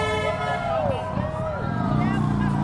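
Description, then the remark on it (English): Motorcycles ridden by veteran riders roaring past, a loud, steady engine drone with rising and falling whines as the bikes go by, filling the whole few seconds. “That was some veteran motorcycle riders.”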